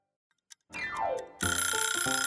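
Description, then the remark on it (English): A quick falling whistle-like tone, then a loud alarm clock bursts into continuous rapid ringing that keeps going to the end, with no voices. “It's time to wake up. Thanks, Clock.”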